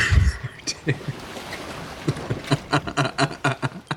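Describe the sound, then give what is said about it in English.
A wooden sailing ship in an 18th-century recreation creaks and rattles, its loose fittings knocking and jangling in irregular bursts, with a deep thump at the start and a faint low rumble beneath. “We're involved in a 18th century recreation of wooden ships. Our boat doesn't sound very secure, like, in any way.”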